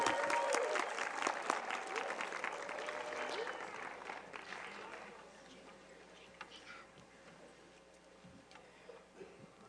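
audience applause

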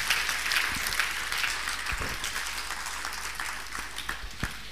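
audience clapping hands

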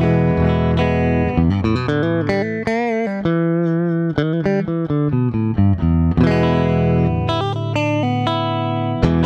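clean electric guitar tone

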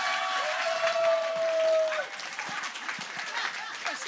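audience applause and clapping

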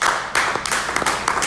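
applause

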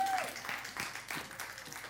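audience clapping and applause

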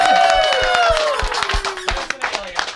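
applause

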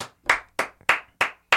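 one person clapping hands

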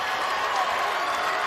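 basketball crowd booing

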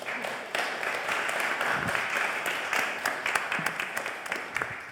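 applause

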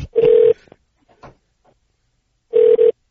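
telephone ringing

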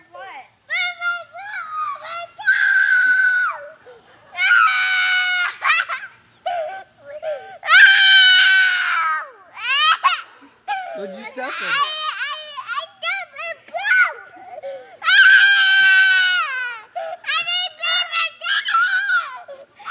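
child screaming and crying

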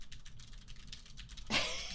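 computer keyboard typing

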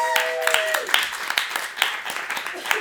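audience clapping

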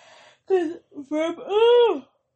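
yawn

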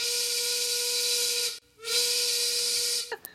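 train steam whistle

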